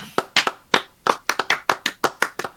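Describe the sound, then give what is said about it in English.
A quick burst of hand clapping to close out a show, roughly fifteen sharp, crisp claps in a slightly uneven rhythm over a couple of seconds, with no talking. “Why don't we clap it out?”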